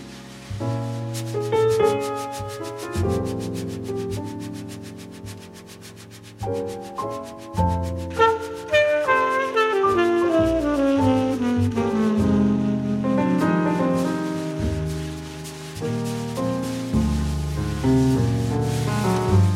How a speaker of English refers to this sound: quiet grace with wire brushes reminds me of the great tap dancer Bill Robinson doing a rhythmic shuffle on a sandy surface.